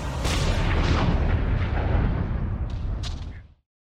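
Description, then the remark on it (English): Storm sound effect in a superhero audio drama featuring T'Challa: loud, deep rolling thunder rumbling steadily, with a couple of sharp lightning-like cracks near the end before it abruptly fades out. No voices. “Marital discord with hail and lightning and hurricane-force winds.”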